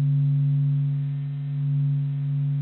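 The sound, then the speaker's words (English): A NASA space recording: a steady, unbroken low hum with a couple of pure tonal lines, droning evenly for a few seconds like a resonant bowl, with no voices or other sounds. “It sounds almost like a Tibetan singing bowl, a constant relaxing hum that I can almost fall asleep to.”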